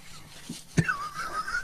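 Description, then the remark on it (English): Someone blows their nose on camera: a sharp burst of air, then a steady, reedy honk lasting about a second, moderately loud, with no talking. “Okay, now you're going to blow your nose on camera.”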